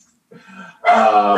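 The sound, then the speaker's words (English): A female puppy makes a soft whimpering sound, then breaks into one loud, drawn-out, high-pitched bark that holds steady to the end. “Sorry, I have a puppy.”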